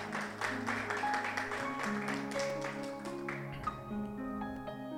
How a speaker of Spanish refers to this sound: Pueden sentarse ustedes. Y le quiere aplaudir a Dios, apláudale a Dios.